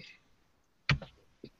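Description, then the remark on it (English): A few sharp, quiet keyboard taps as someone types a name, in a brief irregular burst with short pauses between. No one speaks. “I'm just typing Grant the Fox.”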